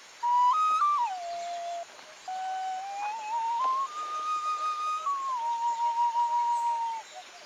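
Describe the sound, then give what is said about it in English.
A snake charmer's flute from the film Octopussy, as Vijay Amritraj charms a snake, plays a slow, winding melody of held notes that step and slide between pitches, with one short pause partway through. No voices are heard. “Yeah, that'll be from Octopussy, and it's our good friend Vijay Amritraj charming a snake.”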